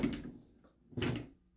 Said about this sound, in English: Of course, I just knocked over everything on my desk.